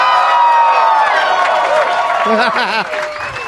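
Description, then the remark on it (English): A packed live comedy crowd at the Acme Comedy Club in Minneapolis, Minnesota, on a Saturday afternoon around 4:20, cheering and clapping loudly, with whoops and overlapping voices in a dense, sustained roar that eases slightly near the end. “This is a great crowd packed in at 4:20 in the afternoon.”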